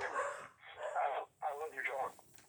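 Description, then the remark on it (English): A dog barks several times in quick succession, loud, each bark sharp and full-voiced with only brief pauses between them. “Just not when I'm trying to do this, unfortunately. Excuse me. I'm a big dog guy.”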